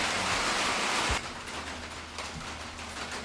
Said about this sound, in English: You may have heard it started raining on us, and we're outside in like a little shelter and with a tin roof, and it got loud. So we're back here, and you may still hear some raindrops